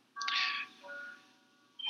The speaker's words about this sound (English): Your clock sounds great, by the way. It must be 8:30.